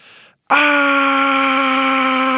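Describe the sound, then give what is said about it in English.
A girl standing at her brother's bedroom door lets out a loud, sustained high-pitched scream that starts abruptly after a brief hiss and holds steady for about two seconds. “You can't scream in my room.”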